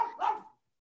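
A dog, Hank, gives a single short, sharp bark, with a brief lead-in yelp before the main bark, then silence follows with no one talking.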